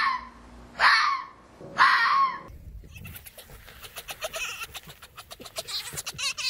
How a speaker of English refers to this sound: And that is what a fox sounds like. It's very strange. Cute. I mean, no, it's cute, but it's kind of strange.